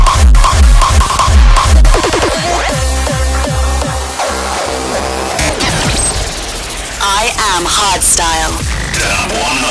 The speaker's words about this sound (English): Hardstyle.